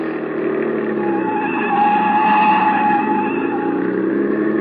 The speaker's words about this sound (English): Hit the gas a little harder. See if you can shake that car behind us.